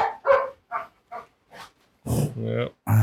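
Dogs bark excitedly in a quick run of short, sharp yaps, then break into a few louder, longer, whining barks close by.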